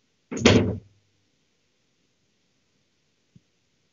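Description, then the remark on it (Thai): A door is opened with one loud clunk that fades quickly, followed by quiet and a faint small click a few seconds later. “เปิดประตู”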